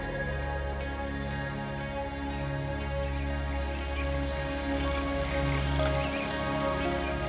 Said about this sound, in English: The clouds let out a cheesy smile and start to drizzle. Not too much, just enough for a work of art,